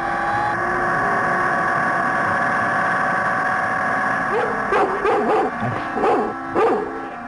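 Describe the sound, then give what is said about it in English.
A dog barks several times in quick succession near the end, loud, over a steady droning engine hum that runs throughout. “There's only one super dog, and I should never doubt him.”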